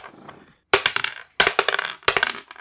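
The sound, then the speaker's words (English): Three quick bursts of players' ready dice being rolled, clattering and tumbling across a hard surface, each a bright rattling series of clicks that fades out, preceded by a faint murmur. “Everybody grab your ready dice.”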